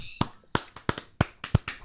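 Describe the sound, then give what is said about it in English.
A quick, uneven run of about eight sharp finger snaps and light claps, a gentlemen's clap, crisp and dry, spread across a couple of seconds with a faint tonal hum near the start. “Gentlemen's clap snaps.”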